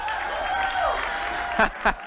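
A room full of people cheering and clapping for a speaker announced for a series on the book of James, a steady wash of applause with a rising whoop and two sharp, louder bursts near the end.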